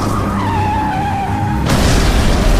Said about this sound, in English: I hit the brakes, but but I still collided with him. The collision caused the Batmobile to crash into a nearby gas station.